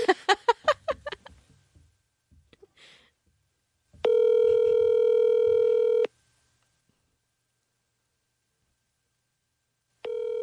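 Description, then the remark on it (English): A phone call being placed from a personal phone: a quick burst of short electronic tones, then a steady ringback tone for about two seconds, a long pause, and the ring starting again. “I could, you know, I could just call from my phone because I don't think we're getting more people.”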